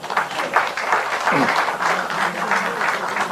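Lawmakers at a Democratic Party caucus meeting applaud emergency committee chairman Woo Sang-ho steadily throughout, dense overlapping hand claps forming a continuous, moderately loud wash of noise with small rhythmic swells, and a brief low voice murmur partway through.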